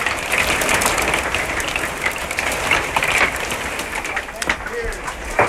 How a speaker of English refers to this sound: I don't know if you guys can actually hear the hail. Yeah, that hail is absolutely killing it. Man, I've not heard a hailstorm like that in a very long time.